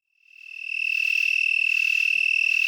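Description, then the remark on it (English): A broad-winged tree cricket (Oecanthus latipennis) trills in one steady, high, continuous note that swells in over the first moment and then holds loud and unbroken, with no voices. “We leave you this week in the company of Ecanthus latupennis.”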